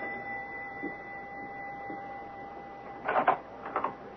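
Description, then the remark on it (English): A doorbell at 91 Pershing Place sounds twice near the end, two short harsh buzzing bursts, the first longer than the second, over a faint steady hum. No one speaks. “Listen, the doorbell is ringing.”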